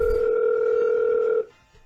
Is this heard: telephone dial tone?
yes